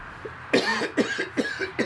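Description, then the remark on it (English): A person coughs several times in quick succession, about four harsh, chesty bursts, with no talking around them. “Well, I mean, as much as you cough on me at night, that's why I always have my back to you.”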